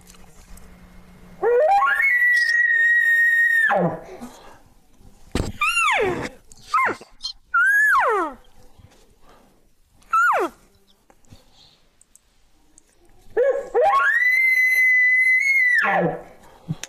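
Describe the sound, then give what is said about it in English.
Two long, loud, high-pitched whistling elk bugles imitated with a game call, separated by several short, descending mews of cow elk calls, each sound clear; the caller imitates a bull with cows while moving up toward a bedding area. “then I'm going to do what I call an advertising bull with cows.”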